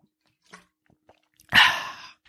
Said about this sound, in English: Welcome back to our ASMR water drinking stream.